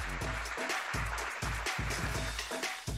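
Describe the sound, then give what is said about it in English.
A loud, sustained roar of applause and cheering for show guest Ramona Shelburne fills all three seconds, dense and steady with a heavy rumbling low end and no speech. “Let's give her a roaring round of applause.”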